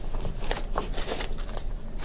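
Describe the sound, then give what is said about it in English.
Papery rustling and crinkling as a paper sample packet of watermarked paper is handled, with a few brief crisp rattles and soft shuffles over about two seconds, no voices. “Here's another paper packet.”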